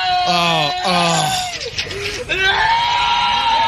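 A badly injured man in a video screams loudly in drawn-out, anguished wails that rise and fall in pitch, with several cries running together over a few seconds, strained.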